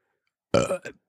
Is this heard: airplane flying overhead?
no